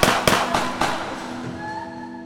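Four sharp gunshots from two men crack off in quick, evenly spaced succession in a parking lot outside an apartment, each a loud bang, followed by a lingering echo that fades away. No voices are heard.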